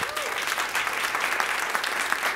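A crowd applauds steadily, a dense wash of many hands clapping at an even loudness throughout, with no voices standing out. An audience claps again for a reverend after her spiritual talk.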